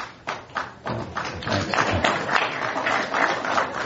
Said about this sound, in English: I hope that's not the last applause I get.